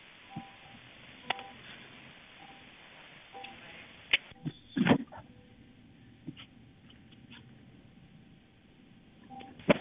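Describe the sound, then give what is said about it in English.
Sharp clicks and short electronic beeps pop up irregularly over the thin, band-limited line hiss of a 911 emergency phone call, with a steady faint tone running through the middle; no one speaks. “So in this part of the 911 call, you'll hear a lot of clicks and beeps, but that's pretty normal for a 911 call, and we're keeping them in so you can hear everything that was provided to us.”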